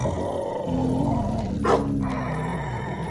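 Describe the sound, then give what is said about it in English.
A bear roars and a coyote snarls as they fight, the coyote attacking the bear, darting in and out and trying to hamstring it; deep continuous growling with a sharp, harsh outburst midway, loud throughout. “The coyote's attacking the bear, darting in and out, but I don't understand.”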